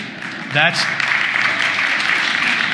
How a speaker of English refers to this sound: Wow, I'm surprised that gets an applause.